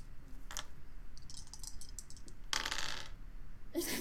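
Dice clatter across a hard tabletop as they are rerolled in a tabletop game, starting with a sharp click, then light scattered ticks, then a loud rattle that settles and a final burst at the end. No one speaks.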